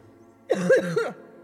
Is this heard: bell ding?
no